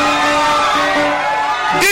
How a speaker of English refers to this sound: Now, when I say 1, 2, at the count of J E S U, then you know what you shout? You shout the loudest, at least let this roof go up so that carpenter can come tomorrow.